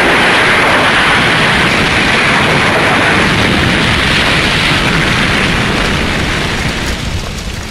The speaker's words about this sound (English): By some miracle, the two managed to flee the house before it collapsed, burning into the sea.